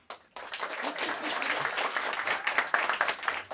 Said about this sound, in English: You can clap after each, you know what I'm saying, after each name clap. You know, we're not going to do a graduation style where I say everybody. After each name, you can clap.